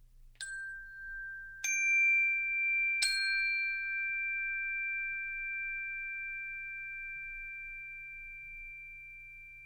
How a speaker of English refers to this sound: So, you know, it'll be something like, just listen to the sound of the chime bell and stay totally quiet while the chime bell fades into silence.